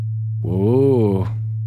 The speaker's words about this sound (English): You want to hear 110 hertz still? Sure, let's hear it. Okay. We're going to transcend.